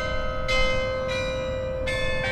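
Church bells ring out in a steady peal, about four fresh strikes in two seconds over a continuous, overlapping hum of sustained metallic tones, fairly loud, with no voices.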